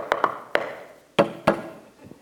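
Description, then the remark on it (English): A coded knock on a door: two quick raps, a single rap, a pause, then two more spaced raps and a faint final tap, sharp with no voices. “So you imagine when Nehemiah goes, knocks the code.”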